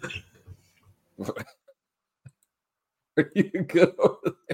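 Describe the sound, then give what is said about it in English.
A man's short, harsh cough bursts out loud right into the microphone, with scattered breathy noises around it and a stretch of muffled vocal sounds afterward. “Jeez, it's this guy's birthday, and he thinks he can just cough right into the mic.”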